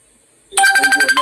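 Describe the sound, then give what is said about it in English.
A phone ringtone bursts in after a brief quiet moment, loud, with a bright repeating electronic melody pulsing in quick, even beats. “Sorry, I mean, that was the man phone. Couldn't edit that out.”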